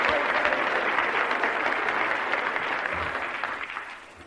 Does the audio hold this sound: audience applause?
yes